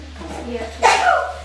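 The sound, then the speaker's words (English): A single abrupt, fairly loud sneeze bursts out, following a brief stretch of soft, muffled voice sounds, with a breathy tail trailing off afterward. “Bless you.”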